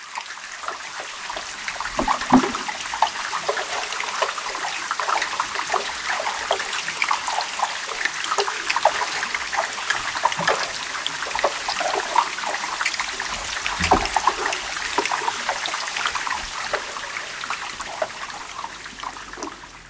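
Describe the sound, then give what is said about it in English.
Dense crackling and popping underwater from a melting iceberg, like steady rain on the surface, with scattered sharper pings and soft low thumps layered through a continuous fizzing hiss; no voices. “Some of them sound like kind of underwater rain with pinging and popping and booming, and it's all ricocheting around in the underwater acoustic space.”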